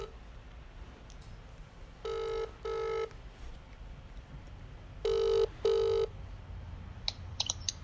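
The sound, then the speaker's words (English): An outgoing phone call rings: two pairs of electronic ringback tones sound over a low background hum, each burst steady and mid-pitched with rich harmonics, followed by a few faint clicks as the line connects. “We'll give him a bell now,”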